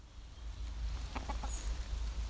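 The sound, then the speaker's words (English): A few short, soft clucks from chickens in the garden of Richmond House care home come in a quick cluster, fairly faint against a steady low outdoor rumble, with no one talking. “Afterwards, in the home's garden and with their chickens listening in, I chatted with the CEO of the charity that runs Richmond House,”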